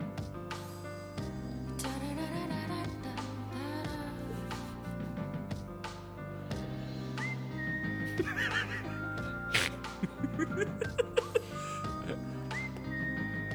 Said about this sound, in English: Wait for the whistling to come in. That's the best part.